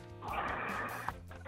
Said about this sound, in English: you're snoring …. Live on the air.